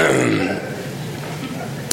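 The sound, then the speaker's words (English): A voice imitates a cough: one rough, throaty vocal burst, fairly loud, trailing into a raspy sustained sound, with a brief sharp click near the end. “and then she coughs again.”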